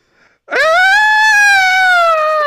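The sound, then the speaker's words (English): A voice lets out a long, loud, sustained scream starting abruptly and holding a steady high pitch for about two seconds, imitating a shrieking new phone ringtone that screams every so often. “So it's screaming like that, like someone is being murdered every so often, regardless of it's closed or not.”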